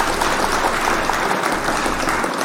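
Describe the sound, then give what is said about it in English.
A dense burst of applause sound effect, steady rapid clapping filling the whole moment at a loud, even level with no voices on top. “Hit the clap for Vanessa.”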